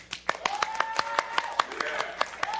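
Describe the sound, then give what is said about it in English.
A studio audience claps to vote for 'cultural wisdom' in a game round, in a steady, fairly sparse patter of sharp hand smacks, with voices whooping and calling out over the applause. “All right, let's hear it for cultural wisdom.”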